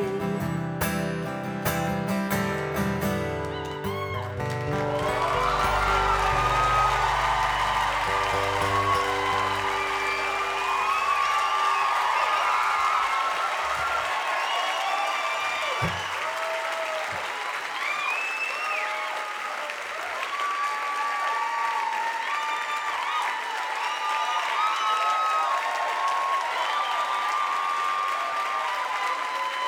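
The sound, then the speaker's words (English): A final sustained musical chord rings out and gives way to a large crowd's loud, steady applause at the Newport Folk Festival, punctuated by whoops, cheers and high whistles that keep going for about twenty-five seconds. “Amazing crowd.”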